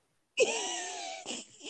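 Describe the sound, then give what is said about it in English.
A person imitates a dog panting on a hot day with two breathy, raspy huffs: a long, loud exhalation carrying a faint falling whine, then a shorter second breath. “So sound like a dog on a hot day.”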